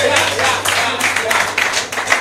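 An audience claps together, a dense wash of hand claps that swells and surges in waves for about two seconds, with a steady low hum underneath.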